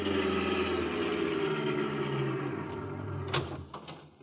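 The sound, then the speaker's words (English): A car driving down the road to Mayor Hoskins' ice house: its engine hums and rumbles steadily, the low drone slowly easing off, followed by a few sharp clunks near the end like a door being handled. “We jumped into a car and drove over.”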